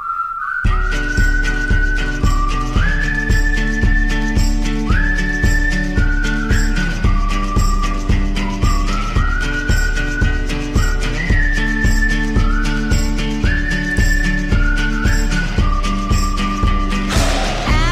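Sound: whistled melody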